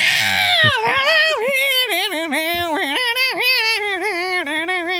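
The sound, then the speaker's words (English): A man's voice imitates a shrieking song hook, a strained, high wavering wail that bends up and down in pitch over several seconds, loud and continuous with a whiny, nasal edge. “Is the hook of the song where he's and he's like shrieking like an asshole.”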